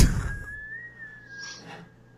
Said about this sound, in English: Whistling? I think. Is that him whistling?